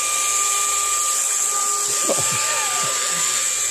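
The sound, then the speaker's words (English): An appliance motor starts up and whirs steadily at its highest speed with a loud, airy rush and a high whine, while lower tones sweep and shift partway through as the caged fan blades spin up, like a vacuum cleaner. “So this is like a vacuum cleaner is the vibes I'm getting.”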